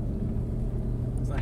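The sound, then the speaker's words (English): A truck engine rumbles steadily and loudly, a deep, continuous idling drone with low throbbing tones, while a voice faintly rises over it near the end. “if y'all hear the truck, we apologize. Yeah, that's my truck. I'm sorry. It's pretty loud.”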